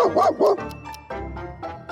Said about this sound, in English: What kind of dog is he? Golden Mountain. I don't know what that kind is. Golden Retriever and Bernese Mountain Mix. Oh, wow. That's a big dog.